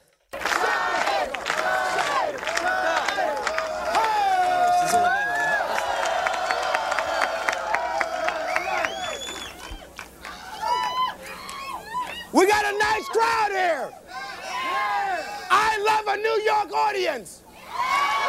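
A loud comedy club audience in the Village cheers, whoops and shouts over one another in a dense, continuous din that dips briefly midway before surging back just as rowdy.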